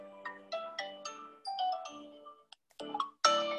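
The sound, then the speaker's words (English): A melodic electronic ringtone plays from a muted phone after a double tap on a Tile tracker's button, a quick series of bright, chiming notes, fairly loud, ending with a louder burst of harsh tones. “Then it gets louder when you turn the power on.”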